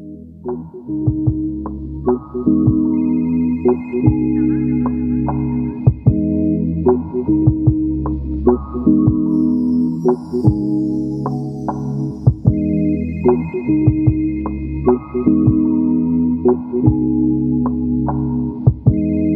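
A phone's ringback tone plays steadily for the whole stretch while an outgoing call waits to connect, a loud, repeating electronic melody with a throbbing, regular rhythm and no voices.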